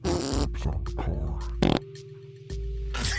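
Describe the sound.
A loud, buzzy fart noise sputters on for about three seconds, with a sharp burst partway through and a brief pause before it resumes.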